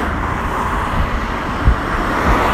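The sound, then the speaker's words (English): A steady, loud wash of road noise, a constant stream of cars passing a person walking along the road, with a dense low rumble and occasional swells as individual vehicles go past. No one speaks. “And as you can tell, as I'm walking down now, there is constant noise. Constant flow of cars going past me.”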